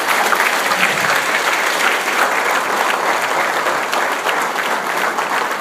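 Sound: thunderous applause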